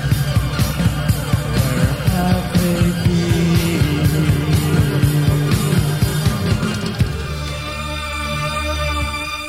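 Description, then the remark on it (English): A live band plays loudly to the end of a song at its final concert, recorded at Birmingham University on May 2, 1980. The music then drops away and the crowd's broad cheering and applause carry on for the final couple of seconds, partly because the singer has just fainted on stage. “And part of the reason the crowd is cheering right now is because singer”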